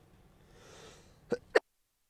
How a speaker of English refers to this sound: And just like that, I'm coughing. You hear the sniffles.